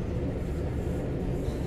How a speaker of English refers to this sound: The train has now slowed considerably for the last part of its run into Gloucester Station.